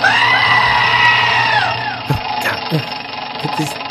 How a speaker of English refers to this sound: It's kind of creepy. It's kind of creepy. It's kind of okay. Wheel, can you stop screaming?